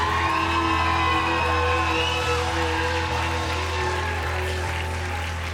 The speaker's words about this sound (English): If you believe all of that, give him the final clap offering and a final shout offering here. And the matter of fact, give him the biggest praise you've given him in 2023.